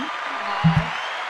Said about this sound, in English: Okay. Thank you, sir. You got the applause. Thank you, sir.